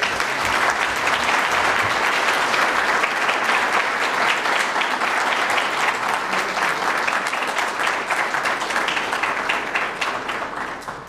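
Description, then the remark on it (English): Sustained, dense applause from a large audience welcomes the president of Mongolia, President Battulga. It holds at a steady, loud level for several seconds, then begins to taper slightly toward the end. “But could I ask you, with your very warm applause, to please welcome the president of Mongolia, President Battulga.”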